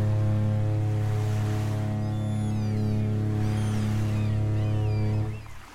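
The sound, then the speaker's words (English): A deep, loud ship's horn sounds in one long, steady blast for several seconds before cutting off, with faint gull-like cries and sea ambience above it. “It's a long horn. Very long horn. Two long horns.”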